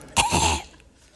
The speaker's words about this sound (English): Excuse me. Nothing like coughing into a loud microphone.